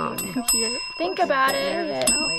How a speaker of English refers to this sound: It's funny to hear so many bells ringing, but everyone does this. On average, people in Wegner's original study ended up ringing the bell about once per minute.